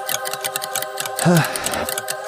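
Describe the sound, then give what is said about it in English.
Loud clock ticking in a rapid, steady rhythm, continuous throughout, with a brief voice sounding partway through over the ticks. “Yeah, I hear ticking.”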